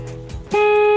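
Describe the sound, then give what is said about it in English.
A car horn is held down for a game called Honk Your Horn, blaring in one loud, steady, unbroken note that starts about halfway through and holds to the end, after a low rumbling hum. “Barry, we want your horn to be long, okay? We want you to hold down that horn.”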